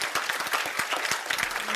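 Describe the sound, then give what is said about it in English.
An audience claps their hands in a steady burst of dense applause, many overlapping sharp claps forming a continuous bright patter with a few louder individual claps standing out. “I want you to clap your hands and say amen.”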